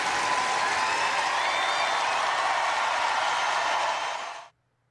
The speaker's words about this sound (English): So she played her final match in Canada in Toronto at the National Bank Open. She lost, but she was obviously celebrated by the crowds and fans. This is what it sounded like.